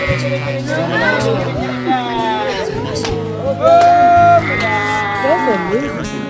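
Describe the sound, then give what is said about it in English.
A flock of sheep bleats in overlapping, wavering cries throughout, fairly loud, while their shepherd calls out to the flock over them, with a strong sustained call midway. “This is the shepherd. Notice the sheep don't come the first time.”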